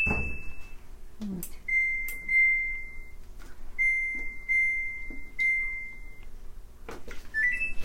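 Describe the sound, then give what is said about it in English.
A new washing machine's start-up chime as the washer is started: a string of clear, high electronic tones, some held and some short, broken by sharp button clicks and ending on a brief rising pair of notes. “All right, I'm going to start the washer here. Hang on. It's a very pretty chime, though.”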